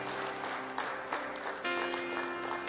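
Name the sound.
audience hand clapping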